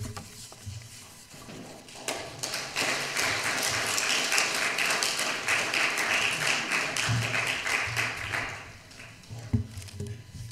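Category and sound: crowd, audience clapping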